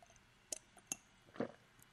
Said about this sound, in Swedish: Ja, jag vet exakt, här, fast jag vill höra dig dricka först. Jag vill höra dig först. Okay, här kommer det.